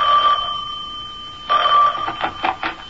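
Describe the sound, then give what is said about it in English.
A telephone rings in a house with a steady electronic trill, two bursts separated by a pause, then a few short chirps at the end; clear, with no voices. “I was barely settled into my mother's house when the phone rang.”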